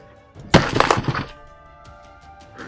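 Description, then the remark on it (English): A burst of crinkly rustling as papers are rustled and a sheet of paper is bent, loud and crackling for under a second, then trailing off into a few faint, scattered ticks. “I'm rustling papers.”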